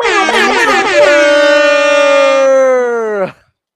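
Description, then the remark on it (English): A loud air horn blares in one long, sustained blast lasting about three seconds, starting with a brief wavering burst before holding a steady, brassy tone and then cutting off abruptly. “I know we said air horns a couple times this episode, but we need some air horns for reaching double digits.”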